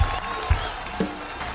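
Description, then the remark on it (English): A crowd applauding: a steady, dense wash of many hands clapping at moderate volume, with a few low thumps and a faint murmur of voices mixed in. “Please clap.”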